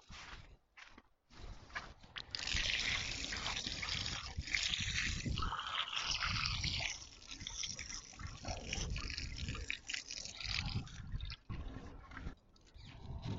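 running water

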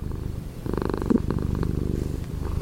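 cat purring

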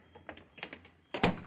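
door being closed

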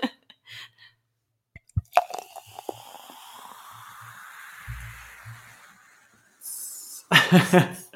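pouring a drink

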